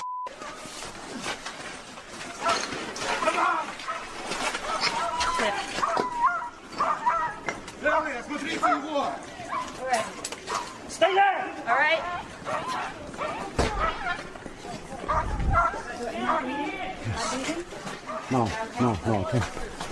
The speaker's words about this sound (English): You hear them screaming for medics. You hear the dogs barking. This is obviously not a military installation.